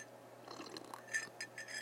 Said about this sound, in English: let me take a sip of tea right here.